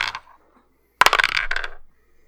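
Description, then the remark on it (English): Dice clatter across a hard tabletop in a sudden burst of rapid clicking and rattling that lasts under a second before settling, with a faint click just beforehand and no voices. “Pick up your dice.”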